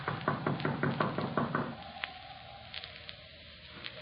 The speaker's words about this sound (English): We gotta let Doc know we're here somewhere or other. I reckon it won't hurt nothing to tap on the door sort of general.